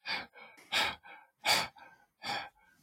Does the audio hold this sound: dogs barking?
no